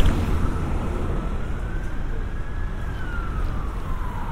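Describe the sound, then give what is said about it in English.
A siren wails, its tone slowly rising and falling, over a constant dense rumble of street traffic with police cars, ambulances and buses on Brixton Hill in South London. “Police cars and ambulances and buses and constant.”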